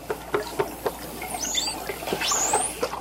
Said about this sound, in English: One of these is the thunk call, a pattern of short knocks that sounds like a person drumming on a piece of wood.